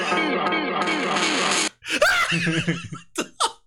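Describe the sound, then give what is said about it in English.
A human voice imitates the crying souls of dead run-over street cats: a long, loud, wavering cry for over a second, then a broken run of shorter rising and falling yowls and gasps. “The crying souls of dead run-over street cats just echoing through the halls, bro.”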